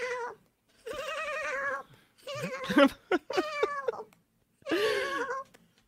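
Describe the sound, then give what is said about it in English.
A voice imitating a goat's bleating cry, several quavering, wavering bleats in a row with short pauses between, loud, with no other sounds around them. “I don't know if that's you doing a goat”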